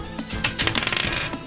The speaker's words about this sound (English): I'm going to roll with real dice because roll 20 is being mean to me. And I trust my Extinction Curse dice more.